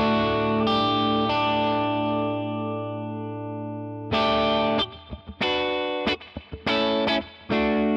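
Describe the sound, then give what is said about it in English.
A clean, bright electric guitar tone from a pedal set to about 12 o'clock, sounding like a Fender Deluxe amp: a sustained strummed chord rings out and decays, then a choppy run of rhythmic strums with brief gaps between them. “It sounds like a Fender Deluxe.”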